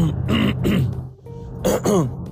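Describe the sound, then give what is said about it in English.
A man clears his throat several times in quick, gravelly bursts, with a brief pause midway before two more rough, voiced rasps. “Sorry, guys. Got to clear my throat.”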